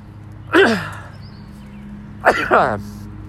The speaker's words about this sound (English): I'm gonna sneeze in a second.